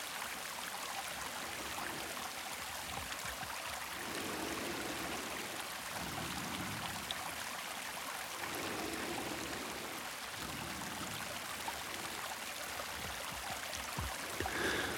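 Steady rushing of flowing stream water, a continuous broad hiss with soft low gurgles swelling and fading every couple of seconds, even in loudness, with no voices.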